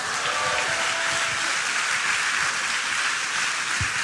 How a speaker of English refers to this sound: If you believe that, give them one more clap offering.